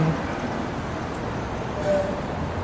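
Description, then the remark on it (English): A continuous, even rumble of road traffic from cars, a broad steady wash of noise with no distinct passes standing out and no voices. “So again, just highlighting the fact that cars are the reason for this.”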